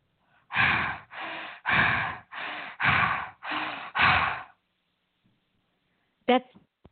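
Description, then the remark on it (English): Loud, heavy breathing through a thin, phone-like line: seven harsh breaths in a steady rhythm, then silence broken by one short crackly burst near the end. “That's the me calling. And heavy breathing.”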